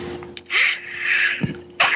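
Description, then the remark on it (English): A single sharp sneeze bursts out, followed by a softer breathy rustle and then another brief noisy burst at the end. No one speaks. “Bless you. Thank you.”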